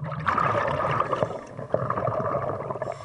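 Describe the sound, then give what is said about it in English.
Muffled underwater ambience during a dive at the bow of a horse ferry shipwreck coated in zebra mussel shells, with a steady low rumble and gurgling, bubbling water, punctuated by a couple of sharp clicks; no voices, a continuous immersive wash throughout. “Back in the water, I draw close to the horse ferry's bow.”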